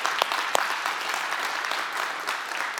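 A church audience applauds steadily for a member couple and their service, a dense wash of many hands clapping at an even level for about three seconds, with no voices standing out.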